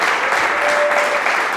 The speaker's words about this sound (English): That is a very good clap.